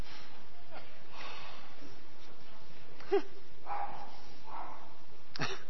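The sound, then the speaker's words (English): A dog lets out a few short, sharp barks and snuffling sounds at irregular moments during a gathering where people are about to sing and pray, with faint voices in the background. “Don't worry about the dog.”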